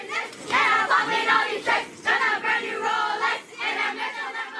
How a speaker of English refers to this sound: Footage from the paparazzi outlet The Hollywood Fix showed young kids and their parents congregating outside the group's house, screaming and singing